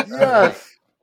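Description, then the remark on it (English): A single harsh crow caw, loud, lasting just over half a second with a raspy, strained tone before falling silent. “Ah, oh, crows. Crows.”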